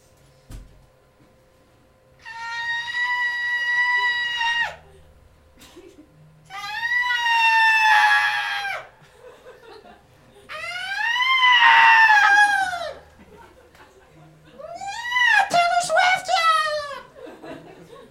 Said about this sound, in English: So here is the rare whinging of a right whale.